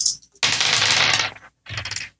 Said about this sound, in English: Do you guys know which dice she rolled? They all rolled in the same pile.